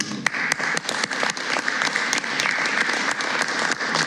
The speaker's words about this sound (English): Mm-hmm. That applause is richly deserved.